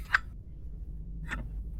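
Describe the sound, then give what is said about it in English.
An eight-sided die (d8) being rolled: two short, sharp clicks about a second apart, the first brighter, over a low steady hum with no talking. “So roll a d8.”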